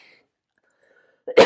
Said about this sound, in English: I cough as I say that.